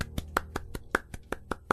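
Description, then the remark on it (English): A single person claps about nine times in a steady, fairly quick rhythm, each clap a sharp, crisp slap of the hands with no talking over it. “Mordecai just starts applauding.”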